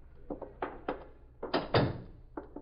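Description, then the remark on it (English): A door being opened: a few quick knocks and clunks at the latch, then a louder scraping swing and another light thump at the end. “Get the door.”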